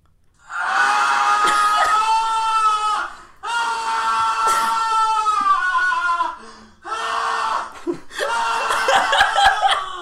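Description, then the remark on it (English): A man screams loudly in four long, strained bursts separated by brief gaps, the cries piercing, with no other sounds around them; a sound effect. “Man screaming. Sound effect.”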